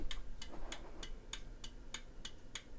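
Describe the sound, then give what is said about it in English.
Electromechanical relays inside a device click as it is pulsed: a steady, evenly spaced series of about nine sharp ticks in under three seconds, fairly loud over a low hum, like a clock ticking. “So yeah, there's these clicking relays in here, and that actually happens for both of them.”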